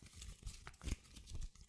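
Irregular rustling and crinkling of a pile of paper cash bills being shuffled and handled, with a few sharper crackles in the middle and no voices.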